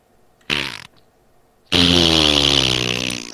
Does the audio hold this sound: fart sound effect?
yes